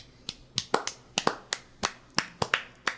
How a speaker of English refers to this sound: Oh yeah, no, you're getting applause for that one.